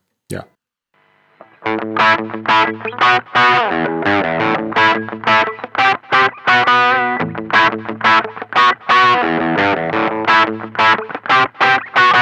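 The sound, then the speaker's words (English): A guitar riff with light distortion plays loudly and steadily, repeating choppy rhythmic chords after a short quiet start, with a slightly wavering effected tone. “which has this kind of riff that is developed in the next part of the suite, but it really like starts... kind of with a very light, I would say, not that heavy distortion, but...”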